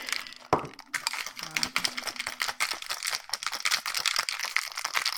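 A can of Funkin nitro espresso martini cocktail cracks open with one sharp pop, followed by a steady crackling fizz of tiny bursting bubbles that keeps going for several seconds, with no talking.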